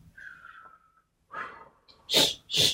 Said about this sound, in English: Wait, isn't that labor breathing? Yeah. Neither of us are in labor.